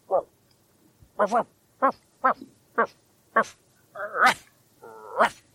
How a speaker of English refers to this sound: Oh, that dog just will not shut up when he needs to shut up.